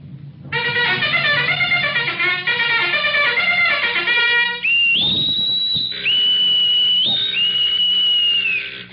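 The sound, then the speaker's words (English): A naval general quarters alarm sounds aboard a ship with a convoy, calling all hands to battle stations, as a loud, rapidly pulsing harmonic tone for several seconds, then gives way to shrill, sustained whistle blasts that step between high pitches, with no voices. “Sound general quarters.”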